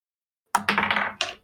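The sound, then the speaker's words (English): Physical dice clatter and tumble across a hard tabletop in a quick burst of rattling clicks, ending with one last sharp bounce before settling, clear with no voices. “Yeah, I'm in lieu of waiting for that, I'm just going to get some dice.”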